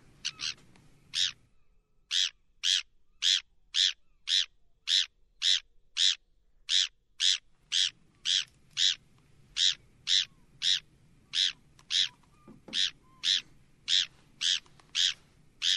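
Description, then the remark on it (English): A Bonaparte's gull gives a long series of short, raspy calls, roughly two per second, steady and fairly loud, over faint low background rumble with no talking. “I was leaning towards tern, but apparently it's a Bonaparte's gull, which we will get here in the winter,”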